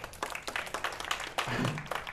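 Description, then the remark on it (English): Audience applause for a visiting group of students from Delhi, India: a dense, steady wash of many hands clapping at once, fairly loud throughout, with a faint voice briefly audible underneath partway through. “So give a round of applause for these guys here.”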